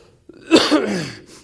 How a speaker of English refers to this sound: I have a cough, but I'm okay.